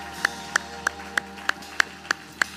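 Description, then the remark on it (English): A church audience at Grace Church claps hands together in a steady, even rhythm to praise the Lord, eight sharp claps about a third of a second apart, over a faint sustained hum in the background. “Can we clap our hands and give the Lord some praise today, shall we?”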